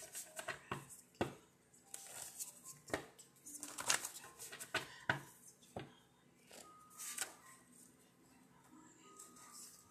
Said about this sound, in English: Just shuffling my jar of cards.